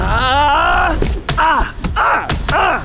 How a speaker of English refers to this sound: Is your brother punching a robot? My tie! You damaged my tie! Yep, he's punching a robot.